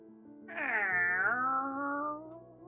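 A single drawn-out cat meow, loud, rising then slowly falling in pitch over about a second and a half, with a faint background hum and no talking.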